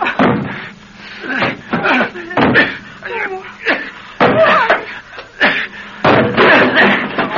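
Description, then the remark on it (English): A metal kitchen stool bangs hard against a front door again and again to bust it open, about seven loud thuds at an uneven pace, with some effortful vocal sounds mixed in between the blows. “This metal kitchen stool will do fine. What are you doing? I'm going to bust us out of here.”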